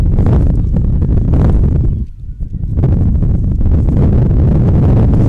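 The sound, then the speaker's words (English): Loud, blustery wind buffets the microphone during a ball game with a roaring low rumble, dropping briefly in the middle before gusting back just as hard. “Boy, again, the wind gusting at about a million miles per hour.”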